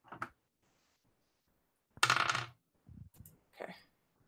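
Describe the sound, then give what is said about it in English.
Dice clatter onto a hard table in several bursts: a quick rattle, a louder tumbling roll after a pause, then two softer skittering bounces as they settle, with no talking. The dice are rolled for a third-level two-action heal, 3d8 plus 24. “The 2-action heal, third level 2-action heal. So 3d8 plus 24.”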